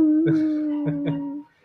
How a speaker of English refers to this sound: You're going to murder everybody in the dark cabin that you live in and just go stare into the woods while wolves howl in the distance.